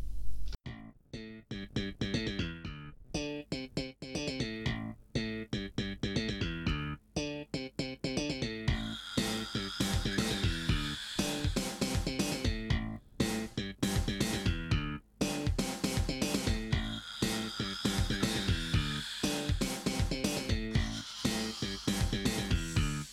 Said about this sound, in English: pray silence, please, for the Seinfeld slap bass